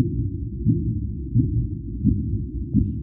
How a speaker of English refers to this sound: And if you play the sound of the gravitational wave, it actually sounds very much like the, one of these clicks of the Minke whale.